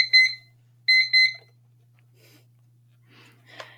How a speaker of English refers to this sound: This is my timer that I recently got, which I love, called the Time Timer. Anyway, sorry about that.